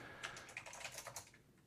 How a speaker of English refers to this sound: There we go. You can hear my Apple extended keyboard too there.